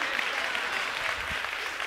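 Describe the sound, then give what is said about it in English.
A crowd claps steadily throughout during a sermon, a dense, even wash of many hands with no pauses and no voices on top. “Then he said, whatever Sarah, your real wife, how many of y'all have a real wife and a, whatever Sarah, mothers, y'all should be applauding me right now because I'm about to help you.”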